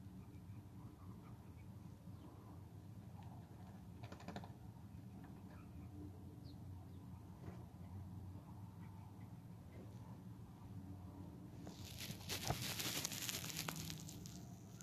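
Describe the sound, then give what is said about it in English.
Birds squabble while being fed peanuts, a busy mix of scuffling, pecking and scattered quacky calls, swelling into a louder flurry of flapping and scrabbling near the end. “I'm feeding the birds. Look at them having a fight.”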